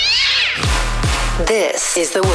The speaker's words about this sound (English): Let's make this kitty purr.